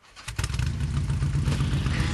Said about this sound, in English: When you think of Harley-Davidson, this is the sound that enters your mind.